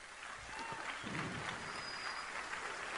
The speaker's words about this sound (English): And they all clap. They're all applauding.